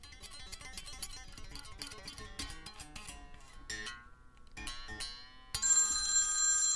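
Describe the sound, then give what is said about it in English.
A telephone rings for an incoming call with bright, warbling electronic tones in quick repeated bursts, growing louder and denser toward the end. No one speaks. “Whoa, that sounds like a phone call.”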